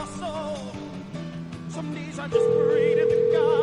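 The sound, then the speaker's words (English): Over a busy musical background, a loud, steady electronic ringing tone of an outgoing phone call cuts in about two-thirds of the way through and holds unbroken to the end. “Come on, pick up your phone, woman.”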